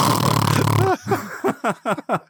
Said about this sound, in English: Sorry, I snored in your ear there,